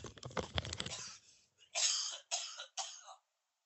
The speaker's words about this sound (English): Can I just clear my throat? I don't know what the hell I've got in my mouth. I might be sick.